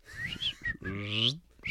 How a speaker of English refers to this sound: Here, ducky, ducky, ducky! For all you duck hunters, rate my duck call. What a fucking duck!